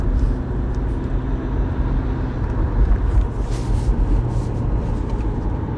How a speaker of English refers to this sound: Oh, Jesus. Oh, Jesus, those cars.